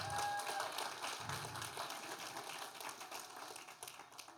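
audience hand clapping

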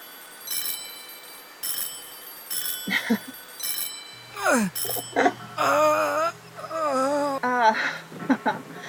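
bells ringing

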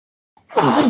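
sneeze

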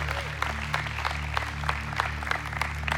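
audience clapping

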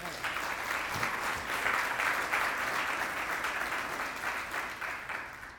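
audience applauding

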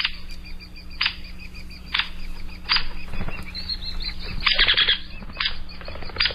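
hairy woodpecker call

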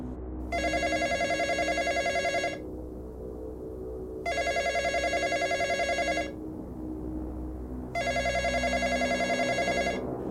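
telephone ringing

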